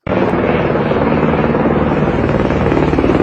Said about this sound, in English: That was some chopper helicopter sound of Telegraph. And it looked like, from the view of it, it looked like a Marine One style helicopter. Over and back.